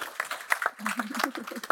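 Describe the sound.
An audience applauds a guest speaker, an author and editor of Citywire Elite Companies, in a steady, dense patter of clapping while a man's voice talks over it for the whole short stretch.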